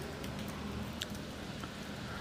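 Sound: rain falling outdoors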